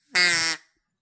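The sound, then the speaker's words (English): A single loud, buzzy quack from a duck call, lasting under half a second, with a raspy, reedy tone and a quick fade, followed by silence. “So duck call to Anthony.”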